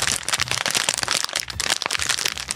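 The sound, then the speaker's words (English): Plastic snack packaging crinkles and crackles steadily for a couple of seconds, a dense run of sharp, bright, rustling bursts with no voices over it. “Sounds like plastic. It is, I guess, plastic. The outside would be plastic.”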